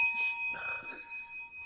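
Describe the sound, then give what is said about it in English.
A small bell, a gift from a friend named Alex, rings with a bright, ringing tone that lingers through the whole moment. It is fairly quiet, with no voices. “Speaking of the bell was a gift from our good friend Alex, a member of the Secondary Heroes.”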